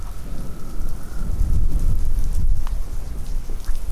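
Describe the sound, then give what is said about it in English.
A night thunderstorm on Isle Royale: steady rain hisses throughout while a deep, rolling rumble of thunder swells through the middle and slowly fades, with occasional louder drops. No voices are heard. “Beautiful night at Isle Royale. Incredible. I love storm energy so much.”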